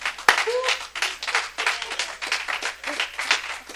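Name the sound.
hands clapping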